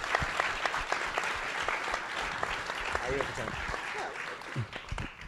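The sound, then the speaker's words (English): A crowd applauds steadily for several seconds for two people being introduced, a dense crackle of many hands clapping at an even loudness, with a few faint voices or cheers rising through it near the end. “So give those two comrades a big hand of applause.”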